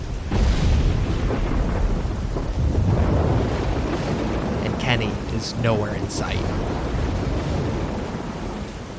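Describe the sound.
A loud thunderstorm outside a barn, with steady pouring rain hissing throughout, lightning, and deep rumbling thunder rolling underneath, while a man speaks briefly over the downpour.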